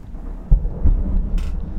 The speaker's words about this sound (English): There's a peal of thunder just now. Ooh, I heard that. Ooh. And now it's at my house. That was cool. Heard it travel. Yeah. But that peal of thunder was dramatically underpinning. It was really loud. It was quite loud.